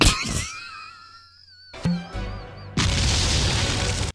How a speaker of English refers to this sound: Fires it, and I throw my goddamn hands up. Wait, you didn't hear the awesome power of this RPG as it makes its thunderous thump?